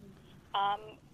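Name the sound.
telephone ringing unanswered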